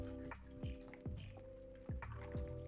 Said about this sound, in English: Which would be, hold on, let me take a sip of this water, y'all.